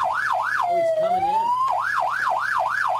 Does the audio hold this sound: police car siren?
yes